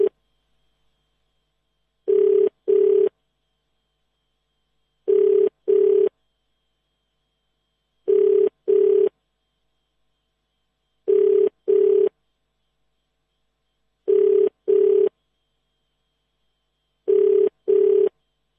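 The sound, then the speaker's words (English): A phone ringback tone from a call placed by a radio station to a listener repeats six times, each a double burst of ringing followed by a pause of silence, steady and clear with no one picking up and no voices. “So I hope we'll be able to leave a message.”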